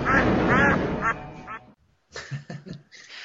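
Several ducks quack loudly in rapid, overlapping bursts, then after a short pause a few quieter, choppier quacks follow.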